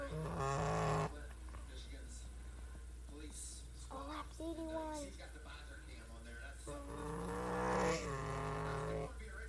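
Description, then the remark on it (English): A race truck engine roars loudly, heard onboard Carson Hosovar's No. 42 Premier Security truck in a Truck Series race, its pitch climbing and dropping with gear shifts over a steady low rumble for about ten seconds. “How about our onboards?”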